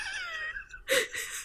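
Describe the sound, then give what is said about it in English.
A voice imitates a crying infant: a high, wavering wail slides downward, then two shorter, louder sobbing bursts follow, alone with no other talk. “He is now an infant and he's crying.”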